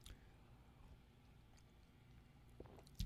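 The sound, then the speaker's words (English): Quiet mouth sounds of someone chewing and swallowing mints, with a few soft crunchy clicks and wet squishes, a sharper bite near the end, and no talking. “Oh, I heard it. I felt it happen. I'm just swallowing the rest.”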